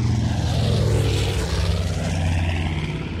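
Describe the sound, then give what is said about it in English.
A loud, steady drone of a United States Army Air Force B-25 Mitchell piston-engine propeller bomber passing overhead, its deep throbbing hum holding strong throughout with a rushing wash of air noise and no voices. “The morning of Saturday, July 18, 1945, a United States Army Air Force's B-25 Mitchell was flying from Bedford Army Airfield in Massachusetts to New Jersey's Newark Airport.”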